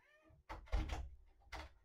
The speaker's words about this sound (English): So we've got the cat flap coming into here, and of course when I lock the door so I can do one of my videos, the cat stands there and meows until I let him out, bless his heart.